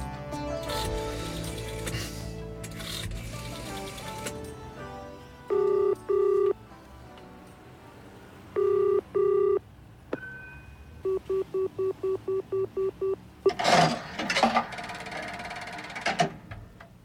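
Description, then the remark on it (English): Telephone tones over faint background noise: two double bursts of ringing, then a quick run of about eight short, even dialing beeps, clear, with some rustling noise at the end. “Phone a certain number, it says, or else.”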